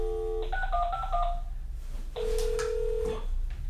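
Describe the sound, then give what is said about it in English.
A quick run of electronic telephone keypad beeps as room service is dialed, followed by a single longer steady tone, all clear over faint background hum with no talking. “Oh, give me the phone.”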